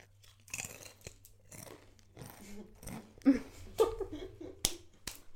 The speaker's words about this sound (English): This is not how I eat. It's crunching. No, it's not. It's crunching. You can fit a whole one in your mouth. It's crunching.